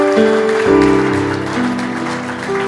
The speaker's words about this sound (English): Clap your hands. I never knew the sound could be this nice. Clap your hands for HHI sound. And for the instrumentalists.